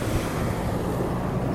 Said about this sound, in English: I mean, there's a tractor trailer.